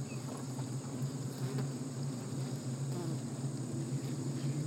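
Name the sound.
buzzing of bees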